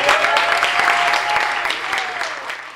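An audience at a Skylight Books author reading applauds in a steady, dense patter of many hands clapping, holding fairly loud for a few seconds before easing slightly toward the end.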